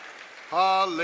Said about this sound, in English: Come on, let's give the Lord a hand clap. Hallelujah.